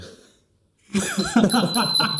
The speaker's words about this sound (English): All right, let's just move on. We ring the bell when we want to move on.